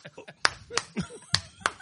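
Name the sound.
double clap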